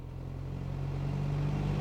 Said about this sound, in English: When Middy pulls up to the house, Panya is already there, but she's not in her car.